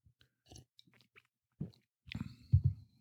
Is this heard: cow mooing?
no